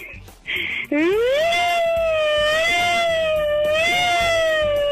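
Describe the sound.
A voice imitates a siren: after a brief breathy hiss, a loud, rising wail swoops up and holds with a wavering, slowly undulating pitch until the end.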